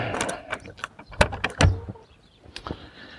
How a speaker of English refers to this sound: Shut my studio door.